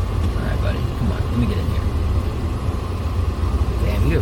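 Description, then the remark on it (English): A car engine rumbles steadily, a continuous low drone that holds fairly loud throughout as the car maneuvers. “It looks like this car might try to hit me.”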